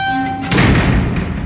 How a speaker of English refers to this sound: And you hear a very loud metal thud.